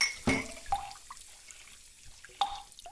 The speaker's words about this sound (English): I actually like washing dishes. For me, it's relaxing and kind of meditative. It gets me thinking. There's just something about the sound of running water that helps get my imagination and creativity flowing.